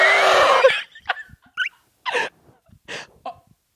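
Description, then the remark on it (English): A person coughs: one long, rough burst followed by four or five shorter, harsh coughs spaced irregularly, fairly loud with no talking. “Wait a minute. There's someone coughing.”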